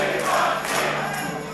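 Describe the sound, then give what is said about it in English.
An impatient concert crowd at the Fort Dix Army Base in 1971 fills the air with a steady, dense roar of overlapping voices and shouts, restless and unbroken, with no single voice standing out. “The impassioned crowd has grown impatient, and who could blame them?”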